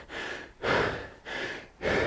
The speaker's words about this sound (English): Just get breathing under control.